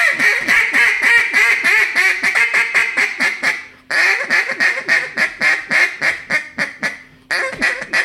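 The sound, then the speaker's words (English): A duck call blown in fast, loud bursts of squeals, whines and cries, tightly strung together, with two brief pauses before the calling resumes; no one speaks. “Squeal on it a little bit. Let me hear little whines and cries.”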